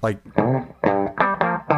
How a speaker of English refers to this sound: It sounds like a really good solid state amp to me. Yeah. It definitely reminds me of using the Acoustic 150. It's got kind of that dry, punchy, barky kind of sound. Yeah.